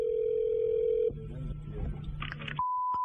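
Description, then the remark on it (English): Telephone line sounds at the start of a call to a clock repair shop: a steady tone that cuts off, brief rumbling, a quick burst of keypad-style beeps, then a clear, sustained higher beep, with no voices. “This is one of the funniest phone calls ever.”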